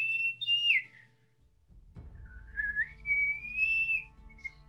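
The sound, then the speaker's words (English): An eagle whistle blown twice: a short, shrill, swooping note, a brief pause with a low rumble, then a longer sustained high whistle that gradually rises and trails off, fairly loud. “Yep, because I'm using Eagle Whistle, so.”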